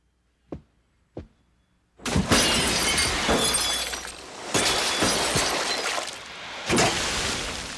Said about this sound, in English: And then we get this flashback of him on his wedding night shattering a waterbed. It's coming back! Ooh, a waterbed.